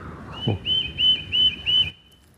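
A bird calls in a backyard in mid-December, with a high, thin whistled note repeated about five times in a quick, even rhythm, over a low rumble of background ambience.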